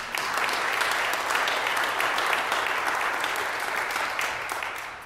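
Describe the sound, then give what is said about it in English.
An audience claps steadily together as a clap offering to the Lord, a dense, continuous wash of many hands sustained for several seconds at an even loudness, fading slightly toward the end. “A clap offering to the Lord, please.”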